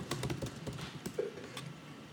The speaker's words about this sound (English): Got the typing sound effects button.